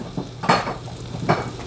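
Battered sandwiches sizzle in a pan with a steady frying hiss, broken by two brief scraping shuffles as a plastic spatula with a fairly long handle moves them about. No one speaks.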